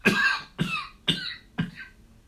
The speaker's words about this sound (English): My apologies. No. I got too excited. Yeah, yeah. The hazard of podcasting that we end up coughing all the time.